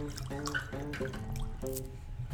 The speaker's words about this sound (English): Alright, so I'll pour the water on the sugar, 3 parts.